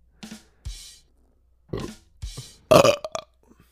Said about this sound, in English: Let's have a beer burping contest.